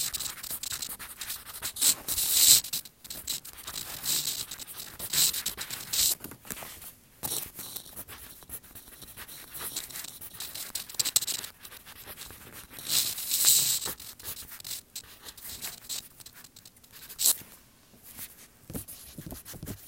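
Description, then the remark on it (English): A pen or pencil scratches steadily across a sheet of paper in continuous strokes with brief pauses, writing down an answer; a dry rasping texture with no voices. “So we're going to have to write that down for question three on your separate sheet of paper, or you can do it on the back.”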